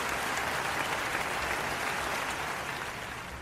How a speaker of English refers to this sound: Malik Cunningham's in the house tonight. Try it, clap it up.